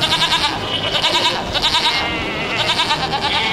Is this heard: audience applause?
no